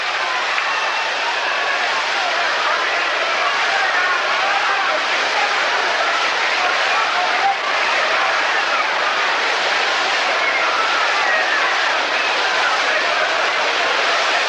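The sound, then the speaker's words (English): A baseball crowd boos in a loud, steady, unbroken roar of many voices that holds at an even level for the full fourteen seconds, with no single speaker standing out. The fans boo as Mantle bats with a 3-1 count against pitcher Shaw, after Maris was walked. “Now they're booing with a 3-1 count on Mantle.”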